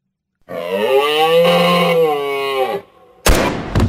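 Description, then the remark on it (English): A long, drawn-out moose call coming through the brush while out hunting, a low nasal moan holding steady for about two seconds before sagging in pitch, followed after a brief pause by a sudden sharp, loud bang. “And coming through the brush, you hear this.”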